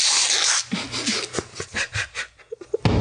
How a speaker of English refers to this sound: I'm about to blow my nose on my shirt.